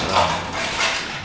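Ice clatters out of the studio's ice machine at Broadcast we USA in a short, rattling rush of hard cubes, with a couple of louder surges. It sounds steady, and no one speaks.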